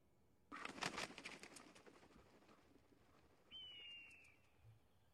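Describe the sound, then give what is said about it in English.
A loud, rustling flurry of an eagle's flapping wings, followed after a pause by a single high, thin screeching eagle cry that slides slightly downward. “Send the eagle.”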